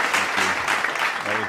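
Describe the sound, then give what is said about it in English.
A clapping sound effect: a short burst of steady, dense clapping, like a small round of applause, fairly loud throughout, with a voice faintly audible underneath. “A little bit of clapping.”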